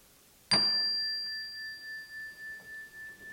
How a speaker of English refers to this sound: Rest there a moment until I ring the bell.